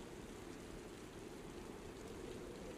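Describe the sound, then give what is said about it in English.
Steady rain falls without pause on troops' tents at Stonehenge in winter, a dense, even hiss of drops with a low rumble underneath, constant in loudness, with no voices present. “When they awoke, it was raining.”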